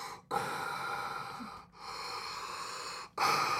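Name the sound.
voice imitating heavy breathing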